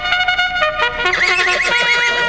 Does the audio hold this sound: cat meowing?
no